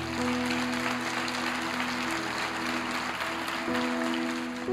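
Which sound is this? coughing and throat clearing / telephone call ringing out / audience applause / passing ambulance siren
audience applause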